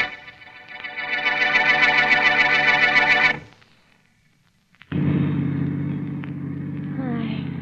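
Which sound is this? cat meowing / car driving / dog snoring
car driving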